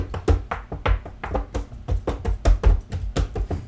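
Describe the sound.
Someone bangs on a table in a drumming rhythm, a quick run of hard, thumping knocks with deep low thuds and sharp cracks, about a dozen hits, steady and fairly loud, with no talking.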